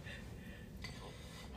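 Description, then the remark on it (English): A long, breathy yawn with a soft gasping inhale and no talking around it. “That was our yawn, sorry.”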